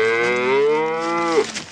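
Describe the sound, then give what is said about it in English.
A cow lets out one long, drawn-out moo, loud, holding a steady pitch before breaking off abruptly at the end, from the scene of the cows being shot in Monty Python and the Holy Grail. No one speaks. “I mean, the scene when Robin Hood was shooting the cows.”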